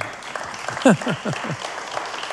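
A steady patter of hands clapping, fairly quiet and continuous, with a few short falling vocal sounds rising briefly above it near the middle.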